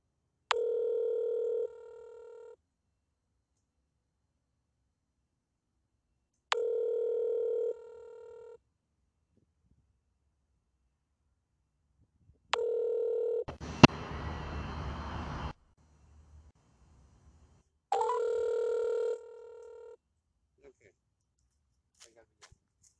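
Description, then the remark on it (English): Electronic telephone tones sound in four evenly spaced bursts, each about two seconds long and clear, with a short rush of harsh noise and faint rustling between them. “You can just give me a number and I can call you.”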